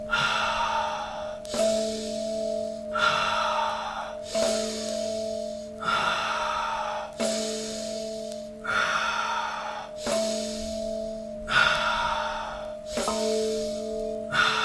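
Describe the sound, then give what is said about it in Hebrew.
Deep, steady breathing in through the nose and out through the mouth in a repeating cycle, roughly ten breaths, each inhale drawn in followed by a longer exhale, fairly loud, with a faint tonal hum in the background. “ונשימה בסיסית, להכניס מהאף ולהוציא מהפה.”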